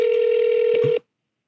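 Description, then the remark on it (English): A single ringback tone from an outgoing phone call, a steady electronic hum over the line lasting about a second before cutting off abruptly, with no one speaking. “First ring happens afterwards.”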